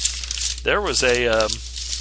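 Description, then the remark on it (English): Paper crinkles and rustles for the whole moment while someone in a studio rummages through leftover pieces of paper, including a receipt, and a drawn-out voiced sound with no clear words rises briefly over the rustling. “A whatchamacallit, a receipt for something. What we got here? Another piece of paper.”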